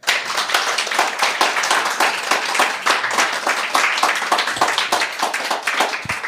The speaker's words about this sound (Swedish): Ikväll, Magnus Londén, stor applåd.